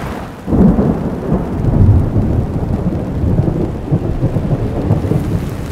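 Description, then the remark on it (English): A loud rumble of thunder rolls across a dark sky over heavy, steady rain at the side of a boulevard, the low booming swelling and fading while the downpour hisses continuously throughout. No voices. “Another crack of thunder rolls across the dark, ominous sky, and the rain becomes ever so more intense.”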